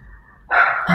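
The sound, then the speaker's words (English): A small pet dog barks sharply, a quick high-pitched yap followed by the start of another, with a faint low hum in the background before it. “There goes my little dog.”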